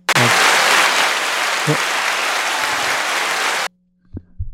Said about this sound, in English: That applause? No, no.